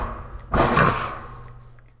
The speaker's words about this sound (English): And I click my knee, and then what I do is I kick the back metal pad thing of this IKEA desk, and it makes this noise.